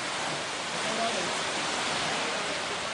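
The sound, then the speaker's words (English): Heavy tropical rain from two tropical depressions pours down near Rakiraki on northern Viti Levu in a dense, steady roar, a continuous hiss that holds at the same loudness throughout without pause; it has been pouring for three days. “The rain from two tropical depressions has been pouring down for 3 days now.”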